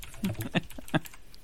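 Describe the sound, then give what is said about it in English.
Quick, uneven clatter of computer keys as someone types a search for an online video, a short burst of several sharp taps with a couple of louder strokes, faint background voices murmuring underneath. “Oh, I spelled cat with a K.”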